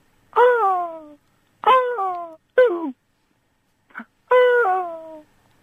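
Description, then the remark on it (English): A voice imitates whale song with four long, drawn-out moaning calls that slide downward in pitch, plus one brief low grunt, each separated by short silences. “is there a noise that makes you feel good, makes you feel better, makes you feel relaxed? Yes. Whale song.”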